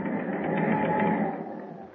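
A ship's engine runs with a steady, dense mechanical drone, a continuous throbbing hum with no pauses that eases slightly in loudness toward the end. No voices are heard.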